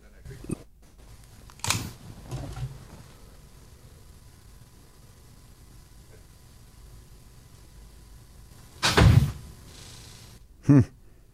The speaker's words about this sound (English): I like the loud door closed. Yeah, but just to confirm that he left the room.